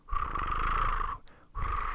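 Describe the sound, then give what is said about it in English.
A quail's low, purring call rolls out in two long, throaty bursts with a brief pause between them, fairly loud, with a buzzy, rumbling texture and no talking. “Almost sounds like a cat's purr.”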